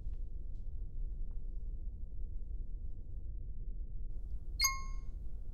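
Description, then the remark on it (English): A single bright electronic ding rings out near the end, a short harmonic chime from a phone notification as the phone's location updates on a page, over a steady low rumbling background with no one talking. “My phone's location just updated on the page.”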